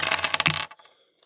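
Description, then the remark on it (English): A quick clatter of dice tumbling across a hard tabletop, a dense burst of bright rattling clicks that settles into a few faint ticks within about a second. “Did not use these dice for red markets. They like the sevens.”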